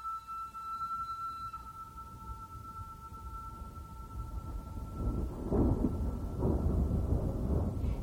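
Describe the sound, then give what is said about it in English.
A distant thunderstorm in the desert, at the other end of a lake, rumbles low and steady, then swells into a louder, rolling growl of thunder in the second half, with a faint sustained tone fading early on. “Sounds like a thunderstorm.”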